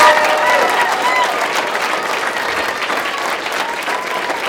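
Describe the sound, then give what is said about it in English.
A church audience claps steadily and loudly for several seconds during a service, a dense, even wash of applause with a few faint whistles or cheers mixed in near the start. “You guys, how about one more round of applause for everybody?”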